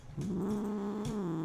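A cat lets out one low, drawn-out grunting sound, fairly loud, holding a steady throaty tone for over a second with no talking.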